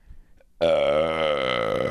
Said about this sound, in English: Oh my God. That sounded like it was a track. That sounded like it was the burp button on a keyboard. It's me, baby.